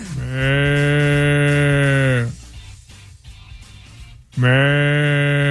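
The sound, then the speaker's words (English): A person imitates water buffalo calls: two long, loud, low bellowing moos with rich harmonics, the first lasting about two seconds, a quiet pause, then a second call begins. “Water buffaloes are coming from all over the land.”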